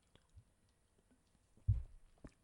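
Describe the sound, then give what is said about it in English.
A quick sip of a drink: faint mouth clicks, then a brief wet slurp and gulp, with a small click afterwards in otherwise near-silence. “I'm going to take a quick sip here because drying out again.”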